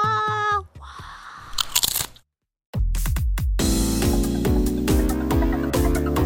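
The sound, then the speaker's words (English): A short burst of loud, crisp crunching, like someone biting into potato chips, follows a brief sustained tone. After a moment of silence, bouncy music with a steady bass line starts up. “Crunch them, munch them, love them for their taste.”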